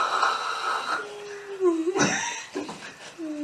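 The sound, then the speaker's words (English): A voice imitates snoring with a few drawn-out, wheezy nasal breaths and throaty rattles, loud, with no words. “Slumber is when you just go in, you gone. I mean, head back, snoring.”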